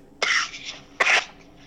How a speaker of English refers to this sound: You all right? Yeah. Got a little cough.